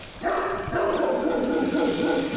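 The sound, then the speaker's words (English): A dog barks steadily with a drawn-out, tonal quality, holding at a constant loudness for a couple of seconds, with no one speaking. “There's a dog. Hear it?”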